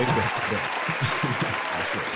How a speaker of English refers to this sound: Well, folks, let's give him a round of applause. The hip-hop encyclopedia himself. He gave us like 13, 14 minutes of his time. I know. We got real claps over here